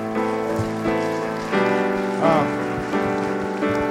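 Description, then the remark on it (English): An audience at a church service applauds steadily to thank a couple for offering a marriage retreat, a dense crackle of clapping that holds at an even level, while sustained musical chords play underneath and shift every second or so. “Will you tell them thank you just with an applause?”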